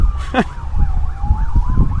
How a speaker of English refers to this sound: This siren's going crazy today. Goddamn sirens! Sirens!